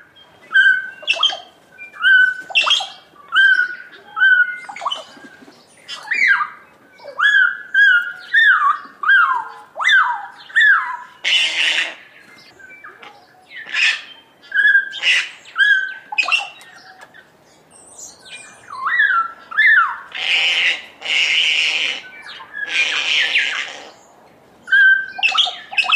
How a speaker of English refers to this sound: At a bird feeding station, we listen to the sounds of kakas, bellbirds, and other species.